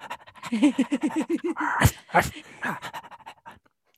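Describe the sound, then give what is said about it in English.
Quick, rhythmic dog-like panting, about a dozen breaths, followed by a couple of harsh, rough bursts and softer breathy scuffling sounds trailing off; a Foley imitation of a pet dog. “listeners, if you're not on Patreon, join so you can see if that was a real dog or not.”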